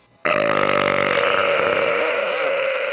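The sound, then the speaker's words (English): A single long, loud burp starts abruptly and drones on for nearly three seconds, rough and throaty at first, then evening out into a steady rasp. “Well, sorry, I was brewing a burp”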